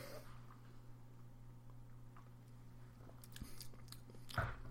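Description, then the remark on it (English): Quiet wet mouth noises of someone sipping and swishing wine during a blind tasting, a few soft slurps and clicks building toward the end over a low steady hum, with no talking. “So I'm going to take a little sip here.”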